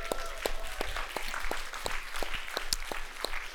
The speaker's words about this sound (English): Today is a day that Christ City Church is planting Christ City, Surrey. So we are having a church gathering. Yeah, we can cheer. Let's cheer.